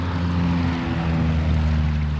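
A steady, droning passenger airplane engine hums overhead as it flies over a river, its low propeller rumble holding even and fairly loud throughout, with a faint wash of background noise and no voices.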